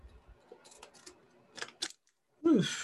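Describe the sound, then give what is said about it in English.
A few crisp snipping clicks from scissors, spaced unevenly, followed by a louder rustling crinkle as a snack bag of Davids is cut open. “Some scissors. Opening up the good old Davids.”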